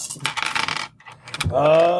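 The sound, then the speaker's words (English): Dice rattle and clatter across a hard surface in a dense burst during a tabletop role-playing game, as a player spends experience to reroll, pause, then skitter briefly again before a sustained voiced exclamation takes over at the end. “Spending a experience to reroll.”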